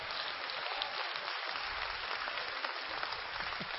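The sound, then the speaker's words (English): An audience at a memorial service applauds with steady, dense clapping, a bright crackling wash of many hands that holds at an even, moderately loud level throughout, with no voices on top. “Come on, give me a hand clap, somebody in this.”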